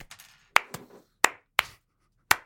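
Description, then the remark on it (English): A few people clap briefly and unevenly on request after a report on Caligula, a scattering of sharp, bright claps rather than steady applause, with small gaps between them and no voices. “And that is my report on Caligula. Clap for me.”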